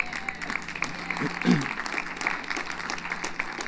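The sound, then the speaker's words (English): A church audience claps steadily for a few seconds for volunteers who cleaned the church, a dense wash of many hands with a brief louder swell midway, and faint voices murmuring beneath it. “And come on, you can clap them.”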